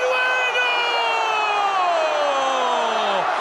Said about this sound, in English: In Peru, the celebration of people jumping and screaming after Farfán's goal was so intense, it activated an earthquake alarm detector in Chile.